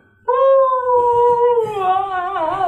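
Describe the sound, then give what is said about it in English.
A single long howl from a large black wolf stepping out of the woods, loud, holding a steady tone that slowly sinks in pitch before wavering at the end, with no voices over it. “You move into defense formation as a large black wolf steps out of the woods.”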